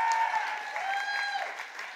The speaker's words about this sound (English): You have been an absolutely delightful audience. Can I have a round of applause for all of our debaters tonight?